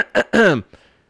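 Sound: throat clearing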